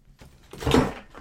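Belongings get knocked over, a short jumbled clatter and thump of things tumbling down that peaks and fades in under a second, with no talking.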